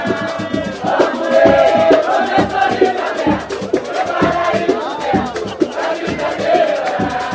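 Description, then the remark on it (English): A large crowd gathered around an outdoor table of seated musicians at an old-fashioned samba roda in Osvaldo Cruz, with no microphones, sings together in loud, sustained unison over rhythmic percussion, the voices swelling and dipping with the samba beat while the drums tap steadily underneath. “The real volume comes from the crowd that gathers around the table.”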